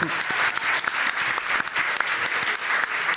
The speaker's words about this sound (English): I will pretend that they were applauding my pun there.